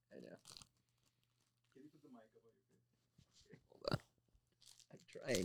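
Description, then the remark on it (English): Crunchy munching in a few sharp, irregular bursts of chewing, with quiet pauses between and a faint voice murmuring briefly in the middle over a low steady hum. “That was the most like you just munch into it.”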